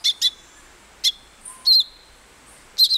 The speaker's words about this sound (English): But a tiny songbird in South America called the thick-billed euphonia does employ what scientists call deceitful mimicry, a very rare trait among birds.